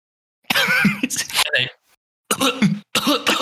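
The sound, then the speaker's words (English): A person imitates a coughing fit: a long raspy burst of hacking, then two shorter, loud coughs separated by brief pauses. “they start coughing.”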